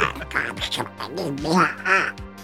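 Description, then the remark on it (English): A voice does a Donald Duck impression, a raspy stream of nasal quacking babble lasting a couple of seconds with uneven bursts and pitch wobbles. “I think it's just like, you know, like big, tall Donald Duck.”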